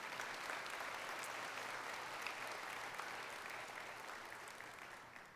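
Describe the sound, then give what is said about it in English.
Light, polite golf-clap applause from an audience: a steady patter of scattered claps that holds fairly even and gently tapers off over about five seconds, with no voices over it. “I'll take that golf clap.”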